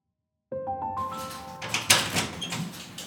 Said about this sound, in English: It was at that moment when he heard the automated sliding door slide open.